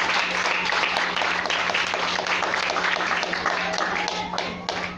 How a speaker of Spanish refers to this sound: Un aplauso al Señor.